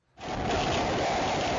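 A dense, steady roar of Hurricane Ida's storm rain and wind rushes in after a brief quiet start and holds loud and unbroken throughout, with no voices.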